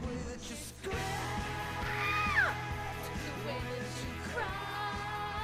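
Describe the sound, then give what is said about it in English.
A strained, screaming vocal rises and falls over a loud song with steady drums and dense instrumentation, peaking sharply around the middle and trailing off. “He's good at screaming.”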